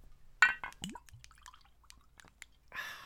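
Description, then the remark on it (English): Jack Daniel's Honey whiskey glugs and drips from a bottle into a glass in a few uneven bursts, ending in a brief splashy rush; no one speaks. “That was a very good bloop. There you go. So I'm just pouring it now, so it's done.”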